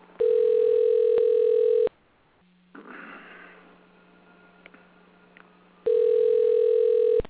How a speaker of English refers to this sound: I will get her on the phone now. And hang on 1 second here. So we dial.